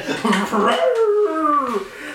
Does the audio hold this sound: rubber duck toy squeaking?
no